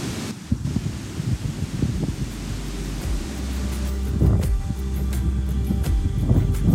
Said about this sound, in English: It was a false spring. The wind has come up, the rain has been pouring in, the sky is grey as anything. You can't hear the birds.